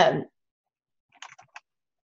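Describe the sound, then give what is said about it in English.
A short, quiet flurry of about five or six quick keystrokes on a computer keyboard as someone types a message follows a brief louder noise at the start and a moment of silence. “I'm typing a message to someone real quick.”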